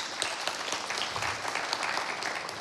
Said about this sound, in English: Oh, man, let's give him a round of applause.